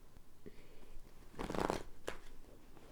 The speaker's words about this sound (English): Okay, y'all. Having some trouble shuffling.